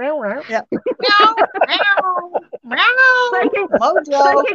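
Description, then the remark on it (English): A series of drawn-out, pitch-bending meows that sound like a person imitating a cat, a greeting to the special guest Mojo. The calls come close together and loud, rising and falling in a continuous playful stream with brief gaps. “And for our special guest, Mojo, meow, meow.”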